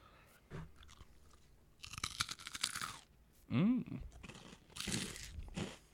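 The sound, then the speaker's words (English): Loud crunching of Flamin' Hot Cheetos from a bowl being chewed right into the mic, coming in two dense bursts of crisp crackles with a brief low hum between them and no talking. “We got a bowl of hot Cheetos here. Here comes some ASMR for you guys. I'm going to crunch right in the mic.”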